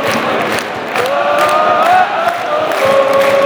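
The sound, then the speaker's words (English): A football crowd at Celtic Park roars steadily, thousands of voices blending into a loud, continuous wash with some sustained chanted or shouted tones rising above it throughout. “Right, there's a roar going around Celtic Park at the moment.”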